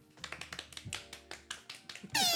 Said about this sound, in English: I was hitting my stomach a little too hard there.